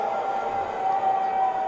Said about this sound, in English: Speaking of protests, Senator Mitt Romney was booed a lot when he tried to speak at the Utah Republican Party organizing convention on Saturday. Here's what it sounded like.